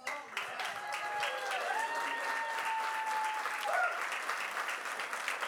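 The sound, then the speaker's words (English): A church audience applauds a pastor steadily throughout, dense clapping from many hands at a fairly even level, with a few voices calling out over it. “let's give another round of applause to Pastor Roger”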